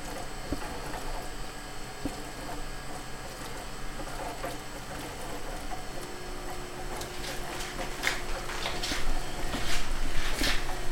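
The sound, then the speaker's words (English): Small irregular pops and ticks of hibiscus wine bubbling as it ferments, sparse at first and growing busier and louder toward the end, over a steady low hum with no voices. “So this is the hibiscus wine fermentation.”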